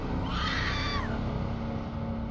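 A woman's short, shrill scream rises and falls, lasting under a second, over a steady, dense low rumble that carries on after the cry fades; it happens in a dark house as a light bulb flickers on.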